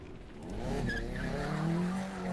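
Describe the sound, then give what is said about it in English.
A car engine revs up with rising, droning harmonics while tires give a high, wavering squeal as the car speeds out onto Swanston Street, the whole sound loud and steady for about two seconds before easing slightly at the end. “I hit the accelerator and sped out onto Swanston Street.”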